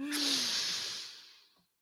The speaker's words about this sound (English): Let's take a deep breath in.